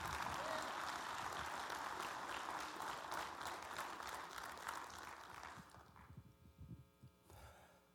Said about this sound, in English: Can you give them a round of applause?